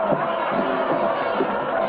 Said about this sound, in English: The steer bounds out into the ring, trying to buck Charlie off. Evil watches and the crowd cheers as Charlie rides the steer.